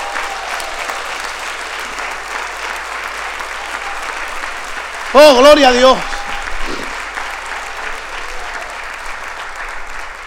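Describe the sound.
A church audience applauds God steadily throughout, a dense, even wash of clapping, while a man's voice briefly calls out an exclamation over it midway.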